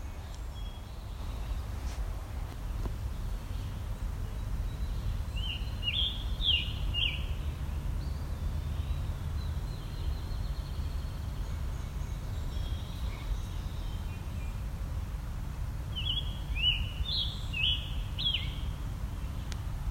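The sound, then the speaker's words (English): A bird sings two short, bright phrases of high, quick notes, about ten seconds apart, from the top of a tree on the edge of a ravine in a mature old-growth forest, over a steady low rumble of background noise. “Actually probably eye level with this bird, even though it's at the top of a tree.”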